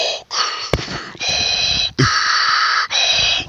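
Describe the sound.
A voice imitates Darth Vader's heavy, mechanical respirator-mask breathing, used as white noise: loud, hissing inhales and exhales repeated in a steady cycle of about four breaths, with brief pauses between them.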